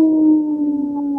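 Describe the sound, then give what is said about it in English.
A single wolf howl, loud, holding one long steady note that sags slightly in pitch over about a second before cutting off, with no other sounds around it. “This portion of the show is supported by Howling for Wolves, protecting wolves for future generations. Howl!”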